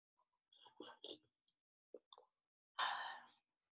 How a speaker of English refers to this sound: Number two, coffee sip. Hold on 1 second.